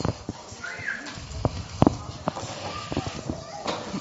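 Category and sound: animal, donkey hooves clip-clopping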